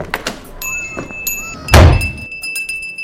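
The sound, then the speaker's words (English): A door shuts with a single heavy thump near the middle, preceded by faint rustling and a few small knocks, with a steady high tone lingering afterward. “Let's go, children. Out the door.”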